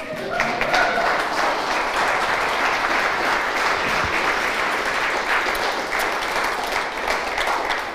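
An audience claps steadily for the full eight seconds, a dense, even wash of many hands with no break and no voices standing out.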